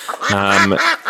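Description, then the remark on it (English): A single loud duck quack, nasal with a buzzy, drawn-out tone lasting about half a second, framed by brief faint sounds on either side. “Now, saving me from breaking embargoes, there was the question duck that's reminded me to remind you, dear listener”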